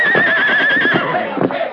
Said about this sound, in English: Look out, that horse. Get him over.